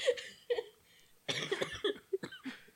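A coughing fit: two short coughs, a brief pause, then a harsher, longer burst of several rough coughs in quick succession, with no talking.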